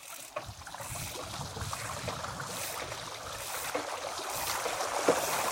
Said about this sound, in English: All right, we got our first river crossing here. That looks about 10 feet deep. Fast moving water.